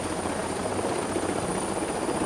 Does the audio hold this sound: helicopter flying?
yes